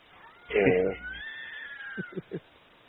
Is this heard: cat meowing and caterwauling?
yes